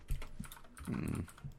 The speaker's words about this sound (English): Oh, yeah, I hear the typing away.